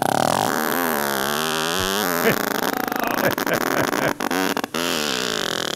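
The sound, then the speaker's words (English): A long, loud, buzzing fart whose pitch wobbles up and down, breaking into sputtering pops and crackles toward the end, with no one talking. “Yes, but what if it's serious butt beef?”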